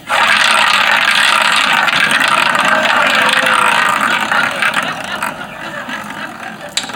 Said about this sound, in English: Let's just pop it in the pan. You know, there's nothing I love more than the sound of sizzling bacon.